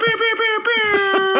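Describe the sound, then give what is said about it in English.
Someone vocally imitates an air horn with one loud, sustained, buzzy blast held at a steady pitch for over a second, while other voices murmur faintly underneath. “Get a sound effect, man. License the horn. You can get an air horn from several.”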